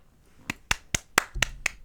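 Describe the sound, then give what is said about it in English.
Six sharp hand claps in a steady, fairly quick rhythm, moderately quiet, with no voices, given as a thank-you shout-out to a new patron. The claps are crisp and evenly spaced, with brief pauses between them. “Claps all around.”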